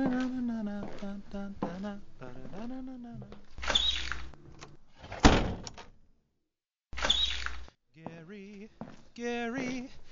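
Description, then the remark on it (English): An unlocked door opens with a rolling, sliding rush and a sharp thunk partway through, then slides again a few seconds later, while voices talk before and after. “your door was unlocked.”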